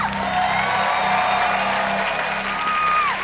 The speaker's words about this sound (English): They're just being nice for cheering, just because I'm here. They're just being nice.